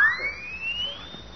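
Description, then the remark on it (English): A single siren-like blast from a horn with a siren in its mouthpiece, blown in a cafeteria: a shrill tone that sweeps steadily upward in pitch and holds loud for over a second, with no voices. “Hey, look at this horn. It's got a siren in the mouthpiece.”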